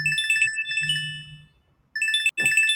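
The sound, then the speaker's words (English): The speaker's own phone rings loudly with a bright electronic melody of repeating tones, breaking off briefly before starting up again. No one speaks. “Please silence all phones in the theater. I'm sorry, that's me.”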